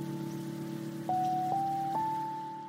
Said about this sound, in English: I also really love that it has these sort of naturalistic sounds, the sort of hissiness. And is that like rain in the background?